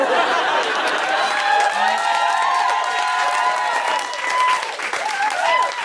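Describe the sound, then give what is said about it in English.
A crowd at The Guilty Feminist claps steadily and loudly for about six seconds, with whoops and high cheering voices rising above the dense patter of hands throughout. “If you're not clapping, we can see you.”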